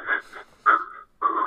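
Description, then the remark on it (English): A voice imitates hyperventilating: three quick, harsh, breathy gasps in rapid succession, fairly loud, with brief gaps between them. “I hyperventilate.”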